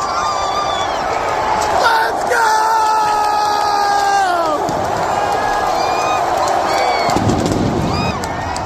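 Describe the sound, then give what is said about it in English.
A huge crowd of 65,000 in a football stadium roars continuously during the final victory kneel-down, recorded on a phone, a dense wall of cheering and shouting with whistle-like tones rising and falling over it, staying loud and sustained throughout. “65,000 people in the stands.”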